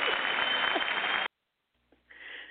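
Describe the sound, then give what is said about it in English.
A dense burst of clapping from many hands, steady and loud for about a second before cutting off abruptly, followed by silence and a few faint rustles. “So this is what you're getting, a round of applause.”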